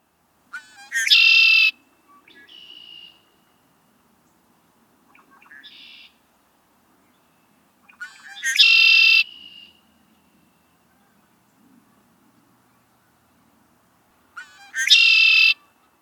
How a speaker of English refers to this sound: And now we move on to our last bird, the king of the marsh themselves, the red-winged blackbird. Spend any amount of time in the wetlands and you will become familiar with the red-winged blackbird's distinctive and familiar song.